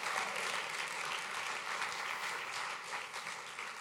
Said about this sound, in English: If you know that God has set you free and empowered you to go high, take 15 seconds, clap those hands, all ye people, and shout unto God with a voice of triumph.